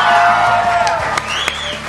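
A crowd at Easterfest 2010 in Australia applauds and cheers for a performer in a steady, loud wash of clapping, with shouts and a rising whoop breaking through over two seconds.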